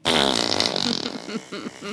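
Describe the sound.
A loud, buzzy fart noise, seemingly blown with the lips, sputters for about a second, then trails into softer, broken vocal sounds.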